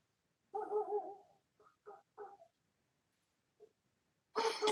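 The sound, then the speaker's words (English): The speaker's dogs yelp and bark outside while playing, starting with a drawn-out whining howl, then a few short yips, a pause, and a sharper, louder bark at the end. “I don't know if you can hear my dogs or if they're coming through, but, man, they are cutting up out there.”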